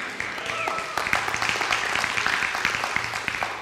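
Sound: audience clapping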